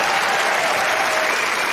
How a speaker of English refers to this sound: Big thanks to her. And please give her a clap. She'll love it back home.